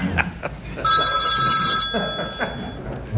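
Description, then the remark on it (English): A phone rings with a bright electronic ringtone, a sustained high warbling tone lasting about two seconds, over a noisy murmur in the background. “And the phones. Yeah. The phones.”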